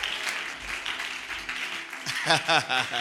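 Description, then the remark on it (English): An audience at a convention claps for the sound engineer steadily in a dense, sustained wash of applause, and partway through a loud, emphatic voice starts speaking over the continuing clapping. “Oh, clap your hands for the sound guy.”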